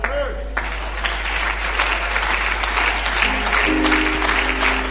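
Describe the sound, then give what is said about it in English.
An audience breaks into sustained applause, many hands clapping in a dense, steady wash that holds for several seconds, with faint voices and a low hum underneath. “Increase that clap often because wisdom is being downloaded.”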